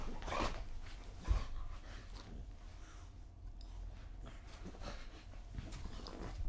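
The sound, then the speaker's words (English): A restless, big female dog whimpers and pants, with soft whines rising and falling over a low, steady rumble of background noise; no one talks. “She is getting antsy.”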